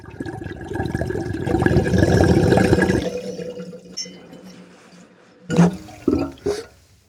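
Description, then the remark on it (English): Bong water bubbling in a steady gurgle for about three seconds as someone takes a hit, then fading to a quiet hiss, followed by a few sharp knocks or clinks near the end. No one speaks. “Just pack it up. Pull the bowl. Yeah. Just hit it, dog.”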